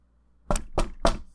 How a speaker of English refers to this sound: I'm going to walk to the door and knock.